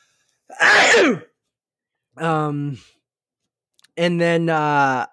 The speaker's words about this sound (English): And I'm going to sneeze.